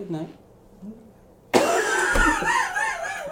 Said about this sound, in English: Okay, that was like an old man cough right there. That was straight up like. That was spleen breaking and coughing right there.